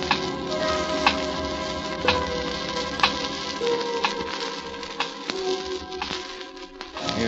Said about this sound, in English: Clocks all over the state, ticking away my life.